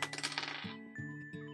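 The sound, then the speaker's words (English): A die is rolled and clatters across a hard surface, a quick burst of busy rattling that settles into a few lighter, ringing taps as it rolls into a bag, with no voices. “It rolled into the bag. It rolled into the bag.”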